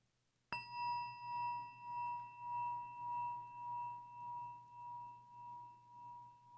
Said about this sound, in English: As we listen to this chime, let us remember our connection to each other and the world around us.